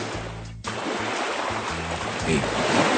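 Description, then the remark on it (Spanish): Steady ocean surf washes continuously, a broad hissing roar that swells slightly louder toward the end, with a low murmur running beneath it. “Le estaba diciendo que estamos en el mar, acá bien campechanamente. A ver, otra vez sube al agua tú.”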